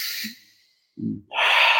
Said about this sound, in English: Because as you keep breathing in, it calms you and it cleanses you. Āroto nei. It helps to regenerate, you know, all your blood so that it can pump well without any hindrances.